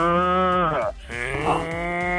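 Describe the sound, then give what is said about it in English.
A person imitates a cow with a loud, drawn-out mooing voice, two sustained lowing calls with a brief break between them, with no other talking. “that's a really good cow that … is doing”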